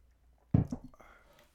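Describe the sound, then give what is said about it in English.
A single quick sip of Irish coffee, a short wet slurp followed by a faint swallow and soft mouth sounds, with no talking. “hold on, I need a sip of this Irish coffee.”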